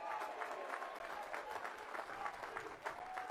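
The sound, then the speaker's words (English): In Milwaukee, an audience applauds those exercising their First Amendment rights, steadily for several seconds, a dense, even wash of many hands clapping with no break or swell, holding at a fairly constant loudness throughout. “And more importantly, let's pause and give a round of applause to those who are exercising their First Amendment rights.”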